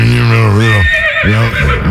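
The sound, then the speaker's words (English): A loud horse whinny with a shaky, wavering pitch, breaking off briefly and then returning in a second quivering burst that fills the short moment. “He's a horse.”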